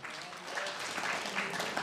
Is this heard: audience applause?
yes